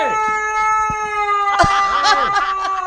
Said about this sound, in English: I wish I knew what breed of dog that was. It actually sounds like a husky. Could be. Yeah, they're pretty expressive. It does. It sounds like there's some guy in there.